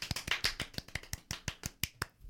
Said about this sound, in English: So guys, please give a Up for Discussion warm round of applause.